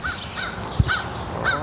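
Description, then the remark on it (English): A crow named Shadow caws three times in a yard, harsh calls spaced evenly over a steady outdoor background, with a brief low thump between them. “Oh, if you're a crow.”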